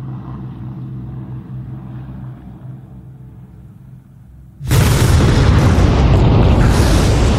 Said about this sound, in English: The explosion from the impact would have been monumental, showering the surrounding fields with broken objects from the aircraft. The noise of thousands of pounds of explosives going off at once would have been heard for tens of miles,